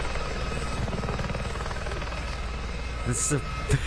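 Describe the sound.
A helicopter about to touch down, its rotors thumping in a fast, steady chop over a loud engine roar, with faint voices breaking through near the end.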